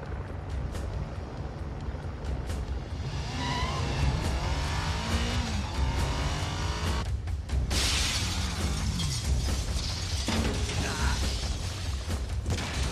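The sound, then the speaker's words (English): A motorcycle engine revs and climbs in pitch, then a loud burst of shattering glass as the motorcycle jumps out of a second-floor window into a helicopter, followed by continued engine roar and crashing debris amid a busy action-movie mix. “But in terms of the practical stunts, we start getting the motorcycle jump out of the second floor window and into the helicopter.”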